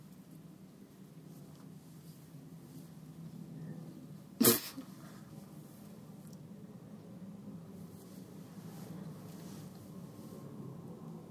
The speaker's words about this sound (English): Your cat makes lots of weird noises.